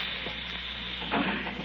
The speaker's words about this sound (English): Listen. You hear that? It's the gas. Someone's turned on the gas. I can smell it.